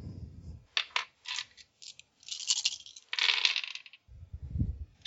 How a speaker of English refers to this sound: Give me a tactics or empathy, whichever is better. Let's see, that would be tactics. It's four dice instead of three.